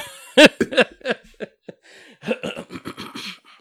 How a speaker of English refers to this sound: So excuse me, man, for clearing my throat, man. I know it sounds like I got the Rona, man.